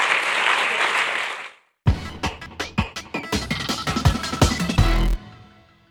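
A dense wash of audience applause fades out, a brief silence follows, then individual sharp claps return, scattered at first and growing quicker before stopping abruptly.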